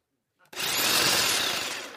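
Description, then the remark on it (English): A power tool motor whirs to life abruptly and runs steadily at full speed for about a second and a half, a loud, dense, high-pitched buzzing with no talking. “I brought one of them with me this morning just to be an illustration. So this is a power tool.”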